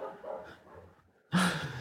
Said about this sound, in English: She's, my neighbor uses the backyard for her puppy, and I'm pretty sure that she's back there right now using the backyard for her puppy. Well, it's good to have Coco weigh in on the conversation.